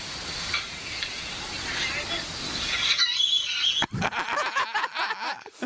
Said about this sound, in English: Oh, the fucking scream, dude. It's too good.